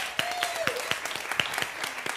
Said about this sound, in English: Let's give a clap to God.